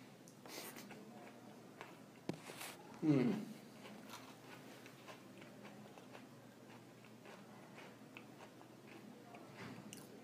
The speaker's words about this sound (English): You promise not to smell and just stick the whole thing in your mouth and tell me what you taste. Yeah. Oh, man. Just go straight for the... Now, do it. Taste it. Let's hear that chewing.